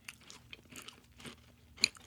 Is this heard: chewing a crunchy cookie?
yes